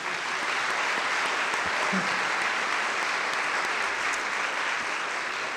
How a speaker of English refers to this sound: And finally, thanks to all of you for being here with us. Could we have a round of applause for all the sponsors?